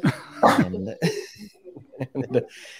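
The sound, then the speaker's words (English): A small dog lets out a few sharp, high barks, followed by a run of shorter, softer vocal yelps and whines that fade toward the end. “But before we get sponsored by the dog”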